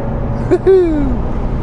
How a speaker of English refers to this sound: I am really enjoying driving this car. I really am. But that's exactly what a Lotus is designed for, isn't it?